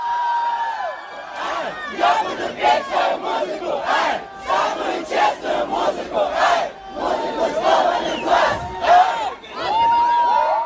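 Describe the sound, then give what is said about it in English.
A large crowd at a street performance by a Russian rapper, who performed on top of a car, chants loudly in rhythmic, repeated bursts of shouted voices, the group yelling together in a steady pulse that carries through the whole stretch with brief pauses between phrases. “What do you think the crowd is chanting there?”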